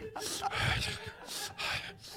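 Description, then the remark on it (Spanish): A voice imitates breathless gasping after climbing a first set of stairs: four or five heavy, rasping breaths in quick succession, fairly loud, with no words. “Tengo un problema respirando”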